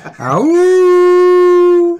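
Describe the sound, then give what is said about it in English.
A person mimics a dog, rising quickly into one long, steady howl-like call that holds loud for nearly two seconds before cutting off. “So you got to practice. You got to practice your barks, man.”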